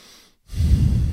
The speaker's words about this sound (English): Breathing through your nose, great idea. Sometimes it's good to relax and let your parasympathetic nervous system kick in. I look to do that when applicable. So breathing through your nose, highly recommended.